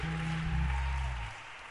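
An audience claps in a steady, dense patter of many hands over a sustained low organ chord, with the music dropping away near the end while the clapping continues.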